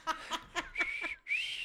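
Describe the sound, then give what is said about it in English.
A person's failed attempt at whistling with three fingers held to the mouth: a few short airy puffs, then two thin, wavering whistle tones that never quite ring out clearly, with no talking. “Anyway, I just tried to whistle and that was terrible.”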